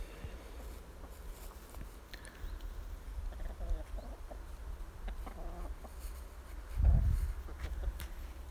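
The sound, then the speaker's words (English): Four hens spread around a grassy hen garden scratching at the ground with their feet: faint, irregular scuffs and rustles scattered over a low steady rumble, with one heavier thump partway through and occasional soft bird sounds. “So the four hens are sort of, they're less huddled around each other now, they're more dispersed around the hen garden. They're all scratching the ground with their feet, actually.”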